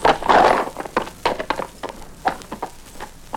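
Quick, irregular horse hoof clops tap out a dancing rhythm, several sharp knocks in close succession with short pauses, moderately loud with no voices.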